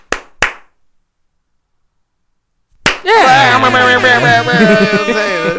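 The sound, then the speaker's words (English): Sharp hand slaps given as a rating ring out: two in quick succession, then silence, then another slap immediately followed by a loud, sustained tonal sound with sliding pitch, like singing or music. “Five slaps as far as you answering and figuring out what this song meant?”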